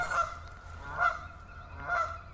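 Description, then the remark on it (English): Canada geese, with an animal swimming after them, honk three times at a steady, roughly one-second rhythm, loud, over a low background rumble with no talking. “Luna's pissing the Canada geese off.”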